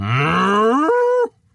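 A single loud cow moo, lasting just over a second, with a pitch that climbs steadily before breaking off abruptly; no voices or other sounds accompany it.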